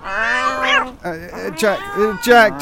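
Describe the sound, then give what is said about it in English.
A person imitates a cat, as practice for the show Russian for Cats, giving a run of drawn-out meows and mewling sounds in quick succession, fairly loud, with no other sounds around them. “You do realize that cats don't speak Russian naturally?”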